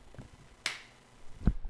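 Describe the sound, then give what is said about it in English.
A single sharp, bright hand clap cracks out, fading quickly, followed a moment later by a dull low thump against faint background noise; the clap marks a pause in a recording. “Quick pause. Clap it.”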